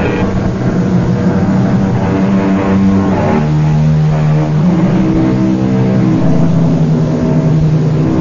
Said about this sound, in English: It is almost midnight. The highway is deserted. Off in the distance, we hear the keening of a finely tuned sports car. It grows louder as the car approaches.